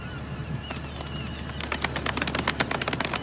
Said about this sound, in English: Pretty good, you know, golf clap. That deserves a golf clap. Golf clap? Golf clap.